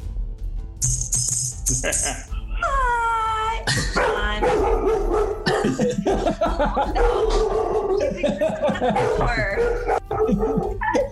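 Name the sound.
small dog barking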